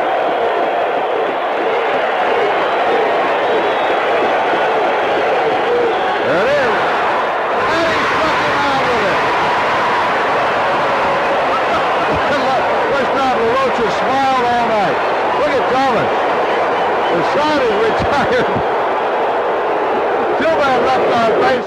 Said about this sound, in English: The thing I noticed, and I'm guessing you noticed during that clip, is that the crowd at Yankee Stadium is extremely loud. They're going bananas.